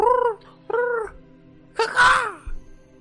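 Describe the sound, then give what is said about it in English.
A person mimics a bird with their voice: two short, matching hooting calls, then a pause and a third louder, rougher call that swoops up and falls away. No words are spoken. “Super advanced bird calls.”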